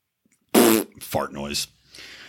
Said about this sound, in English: Fart noise.